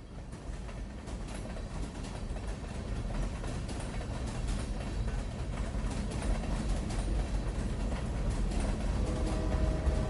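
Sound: train rumbling along rails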